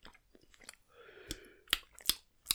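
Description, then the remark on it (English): Chewing of a crunchy snack, with several sharp, loud crunches spaced about half a second apart after a softer stretch of munching. No talking. “Oh, I tell you what, don't breathe in while you're chewing it, because it gets a real.”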